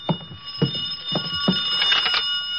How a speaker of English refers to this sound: I could hear the phone ringing from somewhere inside, so I waited to see if anyone answered it. On the third ring, I tried the door.